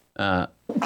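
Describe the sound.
A single sneeze: a loud, voiced, drawn-out "ah" that breaks off, then after a brief pause a sharp, hissing burst of breath.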